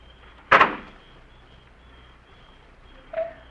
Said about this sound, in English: They sat there in the car perhaps 10 minutes before the car door slammed shut.